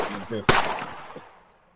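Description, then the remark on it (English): A loud, sharp gunshot cracks out with a ringing tail, followed by a fainter second shot, sounding slightly tinny as if played through a speaker, with a brief voice just before. “out here shooting.”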